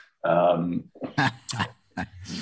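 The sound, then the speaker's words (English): A dog snores in its sleep: a drawn-out, throaty grunting snore followed by a few shorter rough, snuffling breaths in uneven bursts, moderately loud. “My dog is sleeping behind me, and that's him snoring, not me.”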